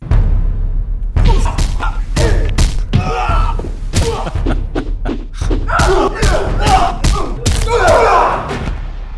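A rapid flurry of loud punches and kicks from a movie trailer, fight hits landing as sharp, heavy thuds in an irregular barrage, with rushing whooshes and brief vocal grunts filling the gaps.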